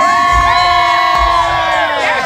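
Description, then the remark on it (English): A crowd of women screams and cheers loudly, many high-pitched voices overlapping in a sustained, excited roar with no pauses. “The best part is I think every single woman who was screaming was also single.”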